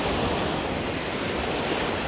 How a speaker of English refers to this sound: As you may be able to hear, there are some waves in the background. And that's the current status, is listening to these waves.